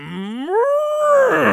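A single loud, drawn-out cow moo, rising in pitch and holding steady before breaking into a breathy, rough finish, heard on its own with no talking.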